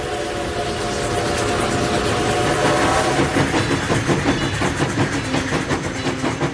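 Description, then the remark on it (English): A train rumbles past on the rails, a loud steady roar giving way to a rapid, rhythmic clickety-clack of wheels, with a sustained tonal horn-like hum early on. “They're called iron horses, battleships, hotshots, rattlers, wind cutters. These are not names for safe machines.”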